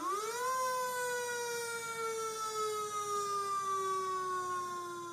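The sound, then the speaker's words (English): A loud alarm siren winds up sharply in pitch, then holds a long, steady wailing tone that slowly drifts lower over several seconds, with no voices. “Sound the alarm.”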